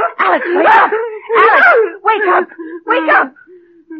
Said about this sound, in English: What is it? What is it? You were having a nightmare. You screamed and woke me up.